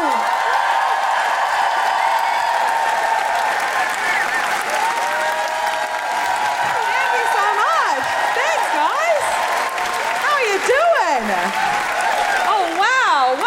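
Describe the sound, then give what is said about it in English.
A large crowd at a Guilty Feminist Amnesty show applauds steadily and loudly for the whole stretch, welcoming comedian Rose Matafeo, with whoops and cheering voices rising and falling above the dense clapping. “Thank you for clapping.”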